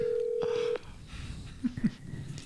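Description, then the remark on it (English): A single steady electronic ringing tone on a phone line lasts under a second, then cuts off, leaving faint line hiss and a couple of soft clicks. “Come on, John, answer the phone.”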